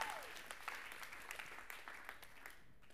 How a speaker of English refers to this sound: Can we give God a clap of praise for how good he is?